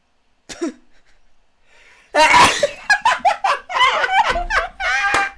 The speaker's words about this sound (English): Wait, I need to sneeze before I do the final line. Bless you.